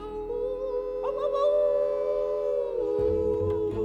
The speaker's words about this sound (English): We're going to hoop and holler and howl at the moon.